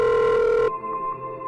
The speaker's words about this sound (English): The phone rings. Looks like a cue.